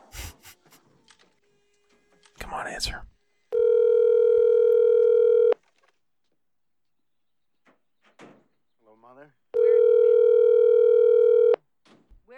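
A telephone ringback tone purrs on an outgoing call in two long, steady bursts of about two seconds each, separated by a pause, with faint handling clicks and rustling around them.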